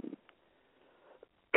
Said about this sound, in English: I'm still coughing a little, but, you know, we're getting there. So, it kind of never went away. Still coughing, still sneezing, you know, after a week, after 2 weeks.